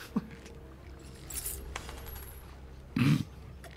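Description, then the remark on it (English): Dice clatter on a table: a sharp early tick, a brief rattle in the middle, then a louder clack near the end, with no one speaking. “You've rolled four nat ones? All right.”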